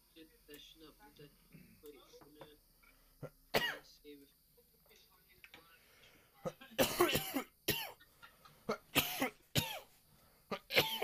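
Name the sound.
coughing fit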